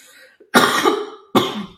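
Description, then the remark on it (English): Two harsh coughs, the first longer and rougher, the second following after a brief pause, loud with no talking. “And I'm just gonna cough.”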